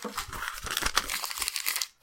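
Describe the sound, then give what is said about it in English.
Steady crinkling of paper for about two seconds, a dense run of crisp rustles and crackles with occasional sharper snaps, ending abruptly. No voices. “Actually, I should just like start bashing an iPad around whenever it comes time to crinkle the paper.”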